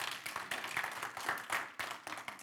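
A standing audience claps together, a dense, steady wash of many hands with no single beat standing out, fairly soft overall and with no voices over it.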